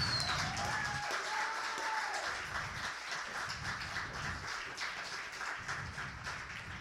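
A poetry slam audience applauds the people who slammed that night, dense overlapping clapping filling the whole stretch at an even, fairly loud level, with a brief high whistle near the start.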